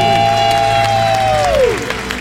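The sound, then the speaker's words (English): A single long, loud celebratory debt-free scream after paying off $301,000 of debt in 4 years and 7 months holds a steady high pitch, then slides downward at the end, with cheering and clapping from a crowd rumbling underneath throughout. “That was a debt-free scream if I ever heard one.”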